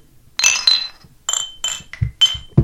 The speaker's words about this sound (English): Oh, we're drinking, yeah. Drinking. Opening drink.